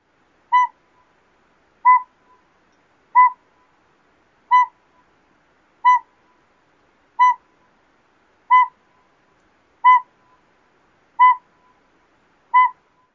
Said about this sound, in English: The first one is the northern pygmy owl. The northern pygmy owl can sometimes be heard during the day. Their song is monotonous, repeated, single toots.